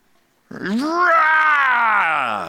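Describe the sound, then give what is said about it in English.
A voice imitates the strained, grunting scream of someone straining to loosen a rusted, stuck bolt on a vehicle, starting abruptly and rising into a sustained, rough, loud yell that holds for about two seconds. “and you've juiced it up with WD-40 over and over and over and it still won't come loose, and you're grunting and getting hemorrhoids because you're straining so hard, and you start to scream at it.”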